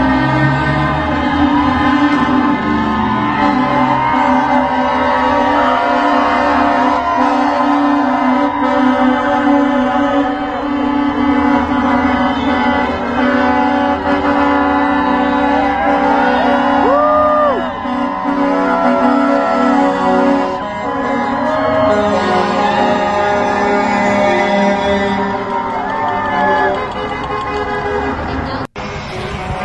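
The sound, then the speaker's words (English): A convoy of trucks and cars at the Canadian trucker protest (Freedom Convoy) honks nonstop, dozens of loud, sustained horn blasts overlapping into a dense, blaring chorus for the whole stretch, with indistinct voices mixed in. “Trucks, lots of cars and trucks.”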